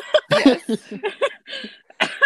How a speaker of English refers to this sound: Sorry, I was clearing my throat.